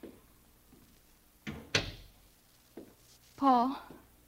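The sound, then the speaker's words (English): A front door is opened: a couple of sharp wooden knocks and a latch click, then a softer thump and a short, tonal creak, all fairly quiet against a still background. “I opened the door for him.”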